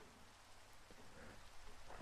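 Steady, dense rain hisses without pause, with a low rumble of thunder underneath that swells slightly toward the end. No voices.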